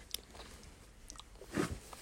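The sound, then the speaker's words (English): Wet, crunchy ASMR biting and chewing of honeycomb by someone wearing braces, with sticky clicks early on and a louder crunching bite near the end, fairly quiet overall with no talking. “Honey comb eating+slight rambling!”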